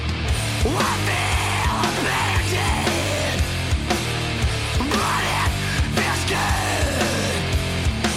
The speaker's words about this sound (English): It even sounds different from the screaming on the rest of this record, like, especially in, like, that breakdown.